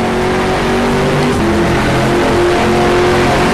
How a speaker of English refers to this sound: Hear the sound of the motor just echoing off the guardrail. Leave it inside of the cockpit. Just love that sound now.